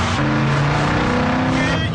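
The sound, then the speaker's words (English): A car engine roars steadily as the vehicle drives at speed, its loud, droning hum filling the whole stretch, with people's voices faintly mixed in beneath the noise. “You're gonna wreck this car and you're liable for it if you wreck it.”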